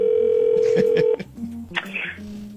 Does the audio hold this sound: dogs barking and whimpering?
no